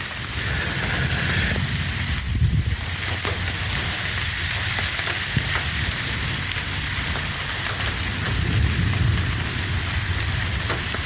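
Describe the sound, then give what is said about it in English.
Steady light rain hisses throughout, with low, soft rumbles of distant thunder rolling in twice, once early and again near the end. No voices. “A little thunder in the distance.”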